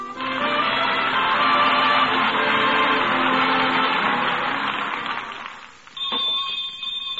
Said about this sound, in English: Well, well, the school bell.